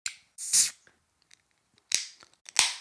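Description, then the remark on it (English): A beer can cracks open with a sharp pop and a bright fizzing hiss, followed by two more short, crisp bursts of crackle and fizz. No one speaks. “Let's grab our glass, grab our can, and let's open her up.”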